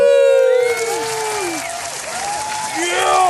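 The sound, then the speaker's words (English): Loud, steady applause from a live studio audience, with whoops and cheering voices rising and falling over the clapping throughout. “Our live studio audience is going nuts.”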